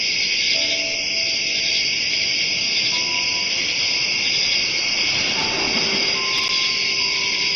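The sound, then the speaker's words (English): A dense, unbroken chorus of crickets chirping steadily at high pitch, played as a sound by an Alexa smart speaker, fairly loud, over a soft hissing wash of background noise, with no one talking. “So we're at the ocean. We have music. And we have crickets.”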